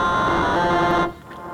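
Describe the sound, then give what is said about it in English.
A loud, buzzy synthesizer tone, rich in harmonics, played with the Dreadbox echo effect bypassed, holds steady for about a second and then stops abruptly, leaving no echo tail, only a faint low hum. “And with the echo effect by Dreadbox, it's very simple, it only has feedback, time and mix, but it sounds very charming, so if I bypass it, the sound is like that.”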